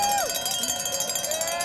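Cowbells clang in a quick, steady rhythm over the noisy hum of an outdoor crowd cheering for a 13-year-old girl competitor, with a few whistles or cheering voices rising briefly above the din.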